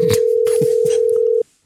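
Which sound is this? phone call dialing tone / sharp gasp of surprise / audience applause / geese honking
phone call dialing tone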